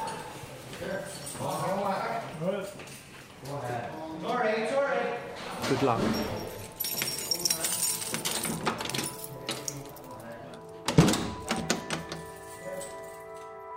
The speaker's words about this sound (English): I think they're locking. I can hear the man closing the doors.